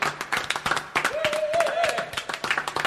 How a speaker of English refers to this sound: Very rarely does an applause like this be given for a sound cue.